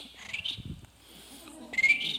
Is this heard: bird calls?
yes